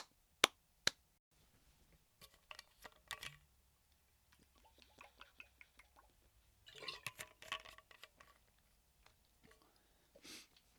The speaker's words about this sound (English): All right, quick sip of water, and I'm back.